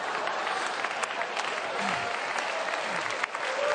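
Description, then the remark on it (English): An audience cheers and applauds during a preacher's sermon in a steady, dense wash of clapping and raised voices that stays loud and continuous for the whole stretch, with a few sharper claps and shouts poking through. “Y'all ain't shouting me down this year.”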